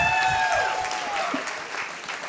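A crowd applauds steadily, dense clapping filling the whole stretch at a fairly loud, even level, with a faint tonal whistle or ringing sliding downward early on.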